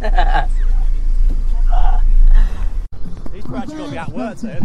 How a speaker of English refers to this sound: Okay, so we're in a field that is very windy boy. Buffeting, isn't it?